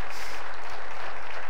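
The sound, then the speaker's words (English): A church audience claps steadily for the pastor after his sermon, a dense, even wash of many hands with no single claps standing out, holding at a moderate level throughout with no voices on top. “I don't know if you're clapping for me or for your patience, but I accept the gesture.”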